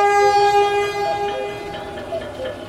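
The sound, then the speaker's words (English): A ghostly train arrives on the tracks, its sustained multi-tone horn ringing steadily over a low rolling rumble from the tracks, fairly loud and continuous throughout, with no voices. “And the ghostly train appears on the tracks.”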